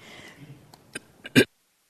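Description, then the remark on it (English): A few short, muffled coughs away from the microphone during a talk at a meditation center in Redwood City, California, with soft ones coming first and then a stronger final burst, followed by silence. No one speaks. “Don't want to cough into your ear.”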